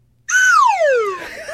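A loud whistle in background music sounds on its own, one long note that slides steadily downward in pitch for about a second before breaking into a brief, wavering tail.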